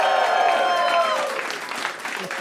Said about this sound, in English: The glasses go up, you go clap. It's like an applause sign.